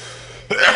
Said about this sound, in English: Hey, that was for the Labor Day. It's the Labor Day cough.